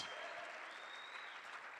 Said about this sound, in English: I need you to do a better clap of your hands this morning, because the truth is that we are making sure that you get a now word from the Lord with a fresh anointing from God. Can somebody please clap their hands and thank the Lord for the priests?